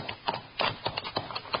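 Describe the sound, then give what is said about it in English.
Horses' hooves clip-clop on hard ground and come to a stop, a quick, uneven series of hollow knocks, moderately loud, with no voices over them, as riders halt their horses, one named Joker, among huge boulders at the mouth of a canyon. “Tie the horses so they can't move out and get hit.”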